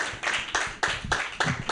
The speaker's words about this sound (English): I was a little worried that the clapping was going to go down, but the clapping is good.